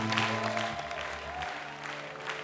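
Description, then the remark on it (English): A church audience at Holy Hill claps steadily, a dense wash of many hands with low sustained tones humming underneath, like an organ or keyboard holding chords. “Holy Hill, can you increase your crap?”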